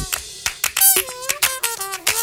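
Sharp snaps and claps strike in a steady, repeating rhythm over a music track with sustained tonal notes, the crisp percussive hits cutting through clearly.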